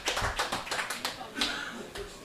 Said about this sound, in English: Everybody give Kevin a round of applause.